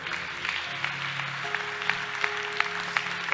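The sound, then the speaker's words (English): A church crowd claps steadily, a dense wash of hand claps with sharper accents landing in a regular beat about three times a second, over a low sustained tone. No one speaks. “If you don't clap, I won't say anything.”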